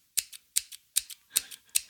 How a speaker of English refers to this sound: This is a lady playing the scissors. This was on stage. She is playing the scissors like this.